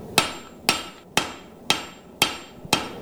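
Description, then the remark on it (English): Six sharp, ringing hammer blows on metal as a spatula is forged, striking at a steady, even rhythm, each with a bright metallic clang and brief decay, clear with no talking. “Just hammer it out. You gotta know what the metal's gonna do, what direction it's gonna go.”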